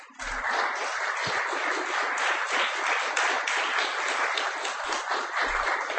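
A crowd applauds steadily for about six seconds, a dense, even wash of many hands clapping at a fairly loud level with no voices over it.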